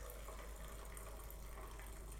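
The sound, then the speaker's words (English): Coffee pouring from a French press into a cup without plunging, the metal filter resting on top of the coffee grounds while the top is held, a steady unbroken trickle and splash of liquid that stays fairly quiet and even throughout, with no one talking. “So what to do is just sit the metal filter just sitting on top of the bed of coffee, and then all you do is hold that, don't plunge, hold the top and just pour straight into your cup.”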